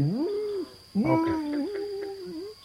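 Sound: cat crying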